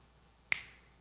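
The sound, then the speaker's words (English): A single sharp finger snap, made during a card trick as a volunteer is asked to think of a card, lands crisply out of near silence, fairly loud, with a bright crack that fades quickly into a short tail. No voices are heard. “when I snap my fingers, what I want you to do is I want you to think of a card and a deck of cards.”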